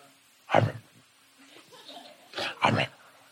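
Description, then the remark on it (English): A person mimics a dog's grumbling with three short, gruff vocal bursts: one on its own, then a quick pair after a pause. “My dog grumbles all the time.”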